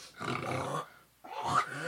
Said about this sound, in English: Sounds like he's coughing up a lung. He's been that all morning.